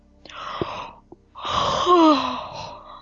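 A single drawn-out yawn: a breathy intake of air, then a long voiced exhale whose pitch slides downward before trailing off. No talking.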